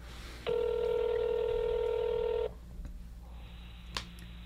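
A telephone keypad tone as a number is dialed to place a call: one steady, bright electronic beep held for about two seconds, then cuts off, leaving low background hum and a single sharp click.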